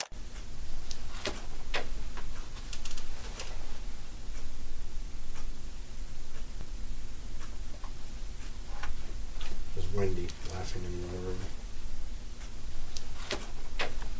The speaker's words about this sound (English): There's also a clock on the wall, which oddly enough ended up helping us time out things because we could follow the beat of the clock.